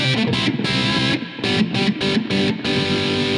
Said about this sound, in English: Just with the bridge pickup on there. So yeah, it's got a cool tone to it. That rectifier has that modern kind of sound, I guess, real distorted sound. Not so much overdriven as, you know, more of a distortion.